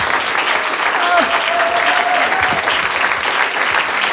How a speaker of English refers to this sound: Let's give them a round of applause before we switch it over.